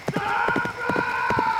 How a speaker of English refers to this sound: For as Brennan and Gwen approached the river from the north, they heard a peculiar sound coming from the south, across the river. Did you hear that? Is that... On the horizon, a horse became visible.